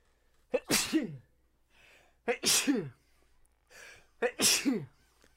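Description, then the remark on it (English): A violent fit of three loud, explosive sneezes in quick succession, each preceded by a sharp inhaled gasp, with brief wheezy breaths between them, and no talking. “No, sometimes I have violent sneeze fits.”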